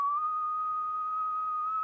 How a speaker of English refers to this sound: but she sucks in when she whistles. So it still makes the same noise? Yeah, like this. That's me sucking in when I whistle.